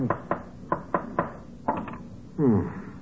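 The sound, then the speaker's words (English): A hammer drives a nail into a wooden frame, tacking a finished painted canvas onto it to keep it stretched, with six or seven sharp, hollow knocks in an uneven rhythm, followed by a short, tonal, voice-like sound at the end. “But what were you doing with the hammer and nail?”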